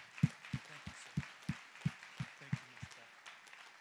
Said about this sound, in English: Family, would you give them a round of applause, please?